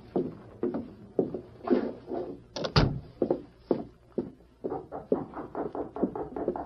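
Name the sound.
knocking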